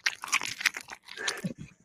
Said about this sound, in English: So y'all can enjoy that while I my quesadilla. Only if you chew as loudly as possible so we can hear you eating your food. That's the only way that's allowed.